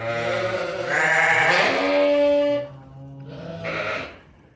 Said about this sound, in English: The many languages of the sheep.